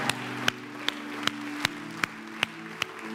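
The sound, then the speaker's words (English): A church audience gives a clap offering during a sermon, clapping in a steady, even rhythm, about nine sharp claps roughly every 0.4 seconds, over a soft, sustained low musical drone. No one speaks. “Come on, somebody give him a clap offering.”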